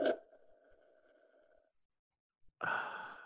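A slurping sip of beer: a short sharp intake, then a thin, steady whistling suck lasting over a second. After a brief pause comes a breathy, hissing exhale.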